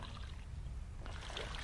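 Liquid pours steadily into a container, a soft continuous splashing that grows a bit brighter and busier partway through. It sounds fairly quiet, with no voices.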